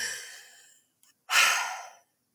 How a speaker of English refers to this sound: Jeez! Should have told me this was a respiratory workout. I would have brought my inhaler.